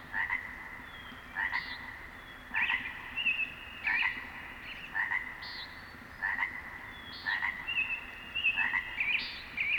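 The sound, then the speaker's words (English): A nearby chorus frog gives repeated, punctuated ribbits roughly every second, standing out clearly over a steady, clamoring chorus of many frogs far off in the background. “the punctuated ribbit of a nearby chorus frog set against a clamoring group of frogs way off in the distance.”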